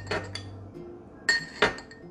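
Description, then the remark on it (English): A knife, dipped in a glass of hot water to clean it between cuts of a cheesecake, clinks against the glass with a few bright, ringing taps: a soft pair early on, then two sharper, louder clinks near the end over a low background hum. “I'm gonna clean my knife between each cut, dipping it in the hot water, and that'll help you get real clean cuts on your cheesecake.”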